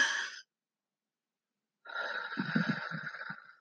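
A quick, airy breath drawn in, a brief pause, then a longer breath pushed out with a slightly rough, rumbling edge, fairly soft, with no talking.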